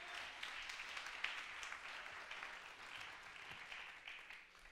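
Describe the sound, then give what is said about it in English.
A crowd claps together during a sermon in a steady, dense wash of hand claps lasting several seconds, fairly quiet overall with no speech over it, tapering slightly toward the end. “I wish I could get 5 hand claps on that.”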